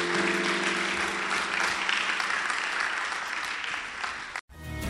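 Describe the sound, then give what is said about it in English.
A crowd applauds steadily at the end of a prayer, a dense wash of many hands clapping at an even loudness for about four and a half seconds before it cuts off abruptly. “Well, folks, okay, clap. Usually you clap.”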